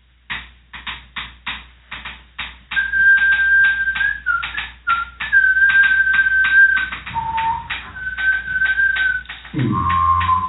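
A thin penny whistle holds wavering, sustained notes over steady, rapid clattering from repurposed percussion, played by an Indigenous duo from Nunavut in a field recording, fairly loud, with no voices; the whistle drops to a lower note near the end.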